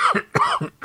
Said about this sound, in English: I'm sorry. I'm coughing because my throat is a little bit dry, but I'm also laughing, which is causing the coughing because I finally looked over at the live chat.